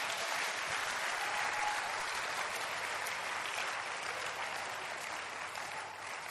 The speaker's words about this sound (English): Say amen and clap your hands for Jesus.